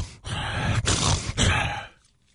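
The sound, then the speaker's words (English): A voice imitates snoring with three rough, breathy snorts in a steady rhythm, fairly loud, then fades into quiet. “Snoring away.”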